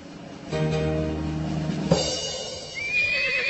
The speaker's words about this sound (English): Hey, watch out. You almost trampled me again. Your damn horse isn't steering right.